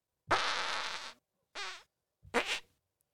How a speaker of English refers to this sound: I just added the first one onto the end there, but dude, I gotta be honest with you. That's Peter Griffin, man. What's funnier than a fart? Another fart.